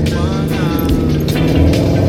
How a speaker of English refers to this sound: Thanks for bearing with the traffic.